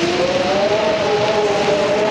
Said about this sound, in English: It's so nice outside. It's warm. It's pleasant. It's... what's that storm noise coming from?